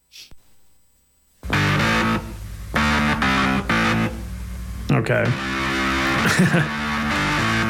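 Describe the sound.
A heavily distorted organ on an isolated track plays a song's main riff, gritty and repeating with stabbing chords and sustained harmonic tones, loud and driving, with drums bleeding through a little; a short spoken word comes before it starts.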